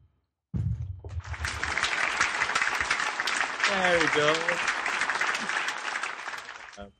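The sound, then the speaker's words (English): A burst of steady canned applause from an applause track starts abruptly and sustains for several seconds at an even, dense level before cutting off sharply, with a brief low voice-like tone partway through. “Clap track?”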